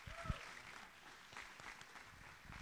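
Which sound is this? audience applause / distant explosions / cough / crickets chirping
audience applause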